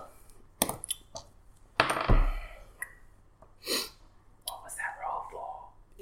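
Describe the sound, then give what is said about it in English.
Dice are dropped for an insight check, clattering onto a hard surface with a quick run of sharp clicks and a brief rattle as they tumble to a stop, showing 17, fairly loud, followed by faint murmuring voices. “So I just dropped the dice because it's just insight.”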